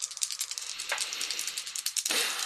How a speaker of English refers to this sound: The dice are not liking me today. This time they do.